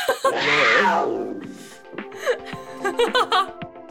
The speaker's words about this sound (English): Maybe I'll put in a roar noise. Roar.